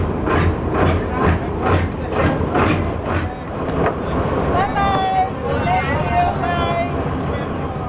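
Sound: boat travelling on water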